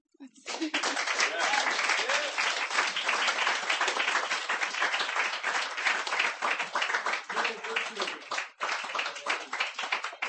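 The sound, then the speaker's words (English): Sustained applause from an audience after a reading of Gertrude Stein fills nearly ten seconds, a dense, steady wash of many hands clapping at once, with a few faint voices calling out underneath before it tapers off. “Do it. Applaud.”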